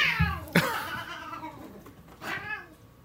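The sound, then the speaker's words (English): Cats fighting, with loud, drawn-out caterwauling yowls that rise and waver, broken by a sharp hissing burst and a second snarling cry near the end. No one speaks. “The cats are fighting.”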